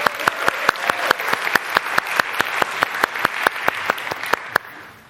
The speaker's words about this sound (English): doesn't she do a great job? Give her a little clap, you know.